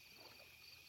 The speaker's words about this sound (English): She gestures generally to their surroundings, the chirping of cricket and the croaking of toad.